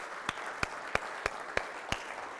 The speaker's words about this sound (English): Now my question is, has God shown up through the years? Does God deserve our appreciation, maybe for just a moment, to applaud for what he has done, huh?